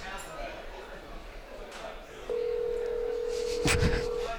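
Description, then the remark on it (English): A phone call rings over a speakerphone: one steady, electronic ring tone lasting about two seconds, fairly loud, following a stretch of muffled room noise with faint voices. “It should be ringing any minute here.”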